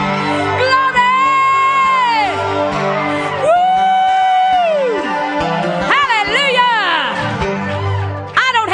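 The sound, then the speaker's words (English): A church audience shouts and whoops loudly and continuously during a sermon, with long rising and falling cries layered over steady background tones, cheering excitedly. “Why you're shouting, I may have to ask you why you're not.”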